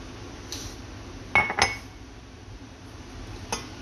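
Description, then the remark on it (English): A K2 supplement is added to a glass of water: a few sharp clinks and taps ring against glass, two close together near the middle, with a softer tap at the start and another near the end. “So I'm gonna put some in my water and I'm gonna get going with this.”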